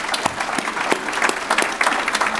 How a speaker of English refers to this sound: Can we actually give all our panellists a big round of applause?